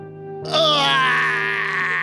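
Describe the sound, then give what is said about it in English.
A long, breathy voiced yawn begins abruptly and stretches out for over a second, its pitch sliding slightly, loud over a steady low hum. “Sorry, I was yawning.”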